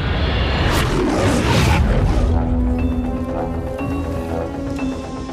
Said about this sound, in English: Despite 50 years of struggles, the studio still soldiers on, with its lion mascot still roaring at the opening of its pictures.